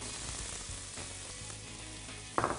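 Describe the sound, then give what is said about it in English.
Shallots sautéing in butter in a hot pan sizzle steadily, a continuous crackling hiss that flares into a louder, brighter burst near the end as more food hits the oil. “All right, so we're going to throw in our shallots now.”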